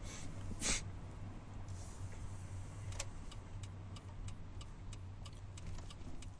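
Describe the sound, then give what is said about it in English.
Steady low engine rumble and road noise from inside a moving car, with a regular ticking like a turn signal clicking through the second half as the car makes a turn. “And I'm just making my turn here. Let me concentrate on not crushing the car.”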